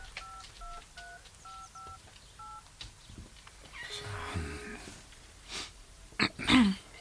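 A quick run of about six short keypad tones beeps out at a steady pace as a smartphone on loudspeaker dials a call, small and tinny, followed by breathy noise and a couple of sharp bursts.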